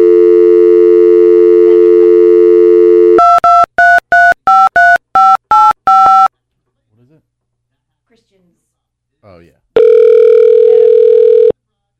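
A steady telephone dial tone gives way to a quick run of about eight keypad beeps, then a short near-silent pause before a long, loud ring tone sounds as the call goes through.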